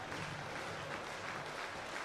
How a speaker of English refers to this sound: The crowd still in attendance here at Russo Park, standing and clapping.